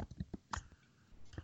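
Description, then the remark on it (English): Soft, irregular clicking of someone typing on a computer keyboard, a handful of quick taps with short pauses between them, fairly quiet with no talking. “Someone typing now. I can hear typing.”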